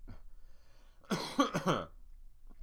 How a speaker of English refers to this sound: You know, your boy's all warmed up. Because I only had to cough once. And that was a beautiful one.